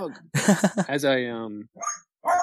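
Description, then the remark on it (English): A female puppy with a condition that keeps her from barking well lets out a weak, hoarse bark, one long strained yelp that trails off, then two short raspy follow-ups, moderately loud. “This poor dog has got a condition so that she can't bark well.”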